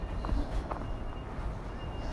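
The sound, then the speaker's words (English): Faint, distant electronic beeping from a reversing lorry that is unloading pallets of wooden concrete blocks, a thin high tone sitting under a steady low outdoor rumble of wind and traffic. “That beeping you can hear in the distance is a lorry unloading a load of pallet of wooden concrete blocks.”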